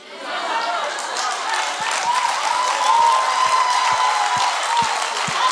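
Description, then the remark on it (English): An audience claps steadily for several seconds, a dense wash of many hands at a constant level, with faint crowd murmur mixed in. “I got a clap on that one.”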